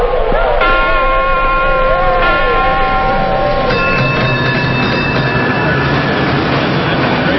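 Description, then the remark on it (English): A cable car of the city's famous cable car system runs through city streets, rumbling steadily along its track with a constant clattering roar overlaid by high, sustained metallic squeals that set in one after another and hang in layered tones. “Crossing the city on the famous cable car system, you're reminded of how the fire which followed the earthquake ripped through streets barely recognizable today, apart from the names, Market Street, Bush Street, Van Ness Avenue.”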